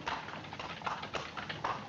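Horse hooves clip-clop at a steady, quick pace on a hard surface as the horse pulls a cart, the clattering beats continuous, with no one speaking.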